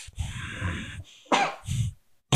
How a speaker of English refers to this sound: Sorry. Someone sneezes in the corner.